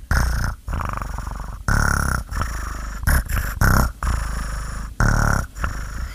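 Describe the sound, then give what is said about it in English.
A person imitates a cat's purr, producing a loud, rumbling vibration in repeated bursts with short breathy pauses between them, no speech. “I can purr too.”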